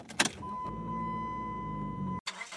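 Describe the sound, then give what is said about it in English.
A car carrying a family pulls away, heading to the hospital: a brief clunk, then a steady engine rumble with a thin whine lasting about two seconds before cutting off abruptly. “Dan, his parents, and Flowy pack in the car, and they all head over to the hospital, where they find Dan's grandma.”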